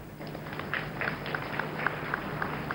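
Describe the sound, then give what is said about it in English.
Audience clapping for a volunteer who has come forward to help with a demonstration: a steady patter of fairly light, crisp claps from a small group, continuing evenly for a few seconds with no voices over it. “Let's clap for him.”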